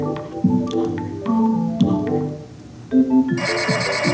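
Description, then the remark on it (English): A telephone rings in a repeating electronic warble, fairly loud, with a harsher buzzing ring cutting in toward the end; no one speaks. “It's ringing.”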